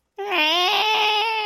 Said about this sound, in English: Imagine if you went to Mars and there was a screaming baby next to you the whole way.